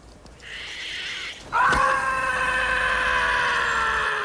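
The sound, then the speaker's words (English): A voice lets out a shrill, drawn-out imitation scream, starting with a thinner wail before jumping into a loud, piercing cry that holds steady for several seconds, strained; it imitates Martin Short screaming in a movie scene where someone shows off a tarantula. “He's like, look, I got a tarantula, and Martin Short screams.”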